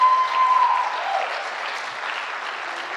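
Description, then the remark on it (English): An audience applauds in a dense, steady wash of clapping that holds at a fairly even loudness throughout, with a thin, high tone sounding briefly near the start. “It's awesome to applaud, but it's for me, it's a witness of just living with Jesus.”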